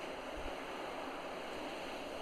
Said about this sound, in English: You hear the waves, feel the breeze ever so gently off of the ocean. Smell the faint scent of ocean life.